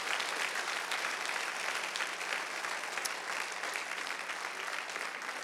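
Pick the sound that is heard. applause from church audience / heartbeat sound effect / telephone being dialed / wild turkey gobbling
applause from church audience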